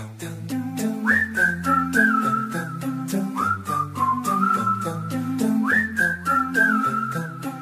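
A pop track with a bright, looping whistled melody riding over a steady beat and layered synth chords, the whistle tune repeating its short phrase every few seconds at a lively, upbeat tempo.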